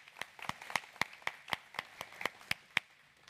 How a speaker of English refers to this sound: Let's clap for our kids as they go to their class.